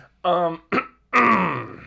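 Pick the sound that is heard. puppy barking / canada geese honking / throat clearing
throat clearing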